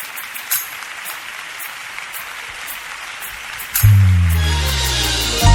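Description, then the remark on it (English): A crowd claps steadily to applaud God, a dense crackling applause with no voices on top. Near the end a loud, low sustained musical chord swells in beneath the clapping. “Applaud God in this room, everybody.”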